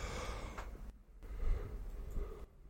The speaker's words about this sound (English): What are you stopping for? Because I can hear you yawning. She's yawning into the mic.